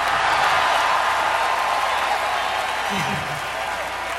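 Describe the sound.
A large concert crowd at The Concert for Central Park in New York City applauds and cheers in a steady, dense roar of clapping that holds for several seconds and eases off slightly toward the end, with a brief low voice surfacing briefly.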